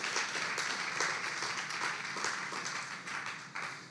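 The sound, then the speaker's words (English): An audience applauds to God after a prayer, steadily for about four seconds, many hands clapping at once in a dense, crackling wash with a few sharper claps standing out. No voices are heard. “Give applause to God because he's so good.”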